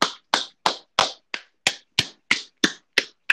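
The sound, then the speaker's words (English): A single person claps loudly and steadily, about eleven sharp claps at an even, brisk pace, each one crisp and quickly fading, with no talking. “I don't know if that was picked up or not, but I was just applauding loudly by that.”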